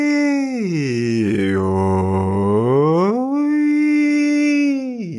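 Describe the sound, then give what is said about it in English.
A single voice imitates a siren as a vocal exercise, sliding its pitch down from a high hum to a low tone, holding there, then gliding back up and sustaining before fading, with no words. “Doesn't sound too lovely, but I was trying to show that, like that siren, siren-y sound.”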